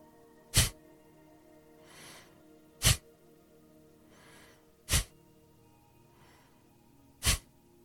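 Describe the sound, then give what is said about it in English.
Four sharp, forceful exhales through the nose during a breathing practice round, hands on the belly and letting the belly go, evenly spaced about two seconds apart, each a short loud huff with a softer, quieter inhale drifting in between. No talking. “So hands on the belly, forcefully exhale, let go of the belly.”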